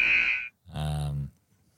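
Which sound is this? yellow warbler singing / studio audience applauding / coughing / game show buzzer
game show buzzer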